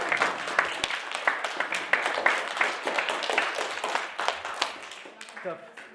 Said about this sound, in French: Oui, vous pouvez vous applaudir bien fort.